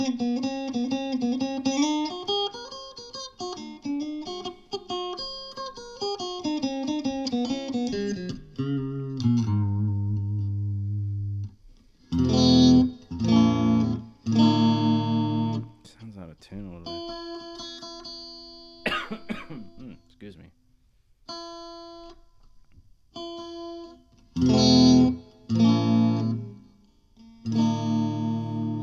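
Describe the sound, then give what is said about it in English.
A bright, distorted electric guitar on its bridge pickup plays alone: sliding, bending lead notes at first, then loud, choppy chord stabs separated by short silences. “So the guitar itself, what I had it playing on mostly, that's the bridge pickup right there. See, it's kind of sharp, a lot of high end on that, a lot of mid and high, you know.”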